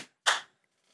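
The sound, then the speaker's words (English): A single sharp hand clap made to sync the audio of a recording, done once more after earlier claps, a loud, crisp snap that rings out briefly and fades within a fraction of a second, with no talking over it. “There's another sound in the middle of the claps that's going to totally F me. So I had to do one more.”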